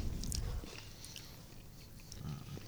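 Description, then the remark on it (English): Crunchy chewing of something hard, with sharp crackling bites at the start and again near the end, heavy mouth sounds in between, and no talking. “It's like chewing rocks.”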